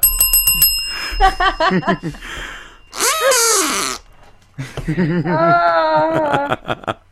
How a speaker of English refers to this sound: What is that bell? I want to ring it. Ring it now.